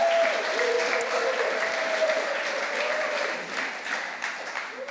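An audience gives a round of applause for the Samaritan, clapping steadily for the full five seconds, a dense, even wash of many hands at a fairly constant moderate loudness, with a faint murmur of voices underneath.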